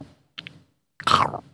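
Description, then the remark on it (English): A voice imitates Axe Cop chomping on a lemon, rind and all, like an apple: a short pair of crisp bite clicks, a pause, then a louder, drawn-out wet munching noise, with no actual words. “He eats it like an apple. He's just munching on that.”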